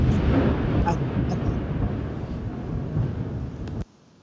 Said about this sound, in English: Oh, there's the wonderful thunder and lightning. Yeah, I'm going through a little bit of a storm here today, so.